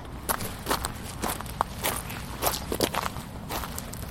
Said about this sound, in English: Walk over some seaweed and stones. Yeah. Onto the beach.